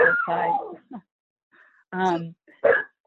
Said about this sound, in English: it's my puppy